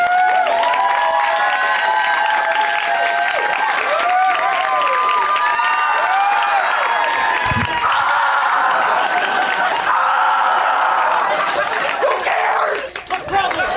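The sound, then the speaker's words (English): A stand-up comedy audience applauds loudly and steadily for about thirteen seconds, with scattered whoops and cheering voices rising over the dense clapping before it tapers off at the end. “Okay, all I need from you is a huge round of applause as you would for me.”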